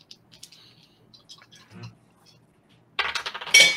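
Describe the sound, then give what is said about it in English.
A few faint, scattered ticks give way to a loud burst of metal dice clattering and rattling across a hard surface near the end, rolled during a tabletop game. “I heard glass. It was metal.”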